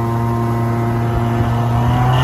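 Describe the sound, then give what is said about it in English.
A car's engine hums loudly and steadily, a continuous motor drone with road rumble and no talking, as a vehicle drives past along the road. “All right, right after this car, maybe I can make it.”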